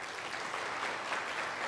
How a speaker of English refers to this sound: They won the Skeeza 2A state championship yesterday. So we have a couple in our church that are on the team. So let's give them a round of applause for that.